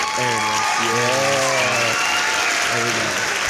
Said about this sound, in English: Yeah. Clap it up. Clap, clap, clap. Yeah, clap it up. Here, let me find the sound effect real quick. We'll get it here. Where is it at?